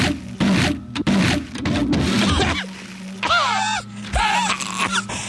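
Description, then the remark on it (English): A paper shredder in an office, with a person caught and held by it, grinds loudly in rough, churning bursts for a couple of seconds, then settles into a steady low motor hum while high, wavering squeals rise and fall over it. “I'm being held tightly by the machine.”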